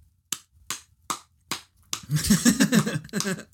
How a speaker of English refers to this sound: Many claps. Well done. Well done.